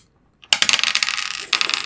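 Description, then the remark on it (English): Dice clatter and tumble across a hard table, a quick burst of sharp rattling clicks that settles, then a second short flurry of rolling taps, fairly loud, with no voices, as recording of the show One-Shot Mishap begins. “I hit the button and 5 seconds in, you're already annoying me with your dice.”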